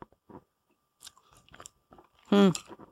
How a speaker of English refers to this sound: All right, here goes. Taking a bite.